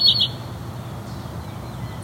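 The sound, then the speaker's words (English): A house wren at a tall tree at the edge of a field gives a couple of quick, sharp ticking calls at the start, then only a steady low outdoor rumble remains with no talking. “We also have something ticking at us.”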